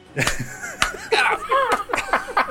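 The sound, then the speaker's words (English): Several sharp hand slaps land at irregular intervals, mixed with snickering laughter and vocal sounds that run throughout. “I'm slapping it.”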